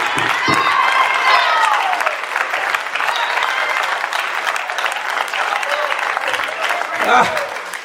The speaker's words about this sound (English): I wish I had somebody up in here who could stand on their feet and clap their hands like the devil is in between them and say, no matter how much they tax.